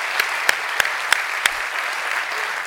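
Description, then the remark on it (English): An audience at a Christian Life Austin worship service applauds steadily, a dense crackle of many hands clapping, with a handful of sharper, louder claps standing out during the first half. No one speaks. “How about, give me a round of applause.”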